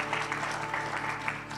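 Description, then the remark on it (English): A crowd applauds steadily, many hands clapping in a dense, continuous wash of sound at an even, moderate level, with a faint low hum underneath and no voices; an audience at a sermon applauding in praise of Jesus. “Can we love on Jesus with our praise and our applause?”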